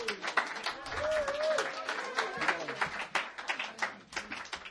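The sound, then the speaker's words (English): An audience claps steadily for several seconds, a dense, crackling patter of many hands at fairly even loudness, with a few voices and brief whoops rising through it. “You can clap.”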